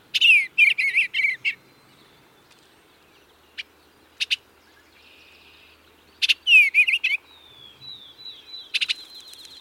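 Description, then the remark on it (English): Soft, warbling bluebird song in short phrases, with gentle chirps and a drawn-out whistle, heard alone against a quiet background. “The bluebirds, love.”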